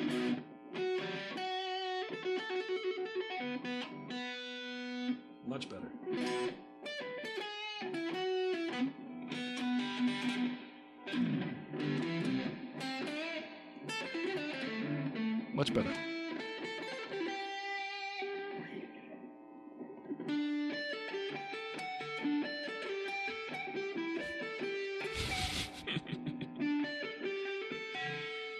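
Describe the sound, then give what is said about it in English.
An electric guitar with thin strings plays a run of chords and single notes drenched in heavy reverb, each note ringing out and blurring into the next, with a man's voice briefly speaking over it. “That sounds so much better with a lot more reverb, because you can cover up your mistakes.”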